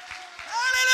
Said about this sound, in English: Would you clap your hands and praise him?